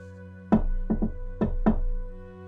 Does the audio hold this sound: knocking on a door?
yes